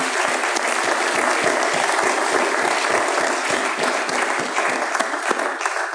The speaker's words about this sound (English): Let's give a young man a round of applause.